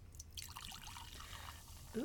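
A can of Salt Flats lime drink poured into a glass: a steady, fizzy splashing and bubbling that runs for about two seconds at moderate volume, with a brief louder sound right at the end.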